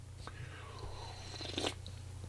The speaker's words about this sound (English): All right. So let me take another sip of coffee. Hold on.